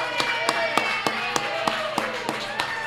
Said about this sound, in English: I'd like to welcome in the Iron Horse. Round of applause for